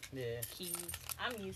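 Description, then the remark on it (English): Keys jangle and clink in a bright, continuous metallic rattle lasting just over a second, with a voice vocalizing over much of it. “All you hear on this podcast right now is.”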